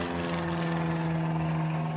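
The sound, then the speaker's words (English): A propeller plane's engine drones loudly and steadily as it takes off attached to a tow rope, a dense continuous hum with a low throbbing beat and no voices. “The other plane came down and attached to the tow rope with no issue at all and took off for higher altitudes.”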